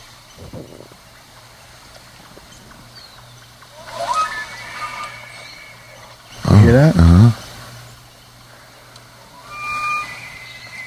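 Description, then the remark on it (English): A male bull elk with a harem of females bugles, a thin rising whistle-like call, over a steady outdoor hum of running water, followed by a voice speaking briefly. “That's a bull elk calling out for pussy.”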